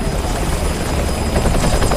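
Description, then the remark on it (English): A helicopter coming in during a trauma call in a TV drama clip: steady rotor thump and engine roar fill the whole stretch, loud and continuous with a pulsing low-end beat and a thin high whine riding above it. “there's been a trauma call, and there's a helicopter coming in, and all the staff kind of rush to see the patient”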